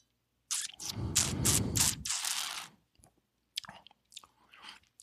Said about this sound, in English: And I'm going to take a sip of the winemaker's blend, and we'll talk about the wine a little bit.